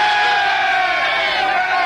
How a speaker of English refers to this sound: Presenting your noble King Rupert II. Large cheer! Yay!